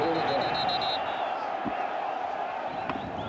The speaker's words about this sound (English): So this is that crowd noise that we've been hearing about. I like it. I do too.